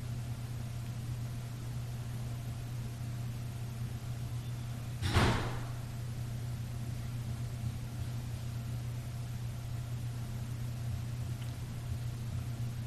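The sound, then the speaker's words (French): A single door bangs shut once, a short sharp thud midway through, over a steady low electrical hum that runs the whole time; no voices, and no clear footsteps are audible. “C'est peut-être possible là, de vivre l'expérience sonore du contact, puis de la conception, une porte, des pas.”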